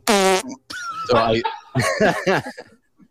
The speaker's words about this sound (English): So I actually do. I have several of my own farts I like to stick in the middle of, you know, written words.